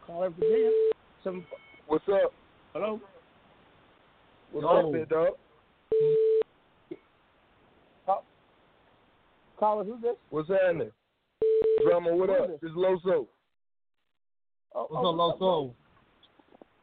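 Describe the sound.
A steady telephone tone sounds in short bursts, three times over the stretch, interrupted by bits of talking between them, clear as a call is being placed.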